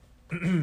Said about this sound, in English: Clear my throat here. It's been kind of dry in here. Sorry.